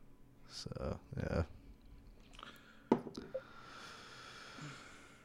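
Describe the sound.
Big Wave Golden Ale by Kona Brewing Company poured into a glass: a few clicks and handling knocks, then a steady foamy hiss of liquid filling the glass for a couple of seconds, with brief murmured voices at the start.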